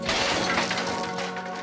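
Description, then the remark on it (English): A loud, sustained crash of breaking and shattering as an air conditioner is kicked out of a window to reveal the opening, with a steady low hum running underneath and no voices. “Carrie and Bert continue on their way upstairs to the air conditioner, and Carrie kicks it out to reveal the opening.”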